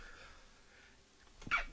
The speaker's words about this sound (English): That's my second sneeze. Excuse me.